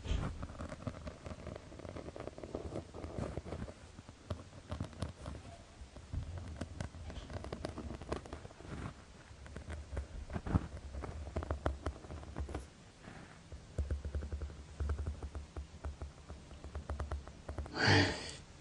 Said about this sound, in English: This is what it sounds like. Sounds like she's rustling, crackling material.